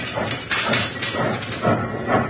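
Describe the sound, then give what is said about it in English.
A wood-fired steam locomotive running at full throttle across a burning bridge, its loud, hissing chuffs pounding out in a steady rhythm over a continuous rumbling roar. “Well, I've got these throttles wide open. Go, you iron horse.”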